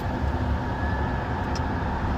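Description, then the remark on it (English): A car's engine hums in a steady, low rumble as it creeps forward toward a drive-through window, with no voices and no sharp sounds breaking the constant drone. “Just about to get up to the drive-through window.”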